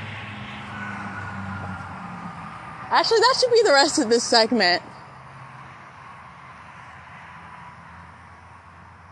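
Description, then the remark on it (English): A steady, rushing roar of highway traffic, heard from a safe distance away, runs throughout with a low rumble underneath, and a man speaks briefly over it partway through. “It sounds like I'm walking on the highway, but I'm a safe distance away.”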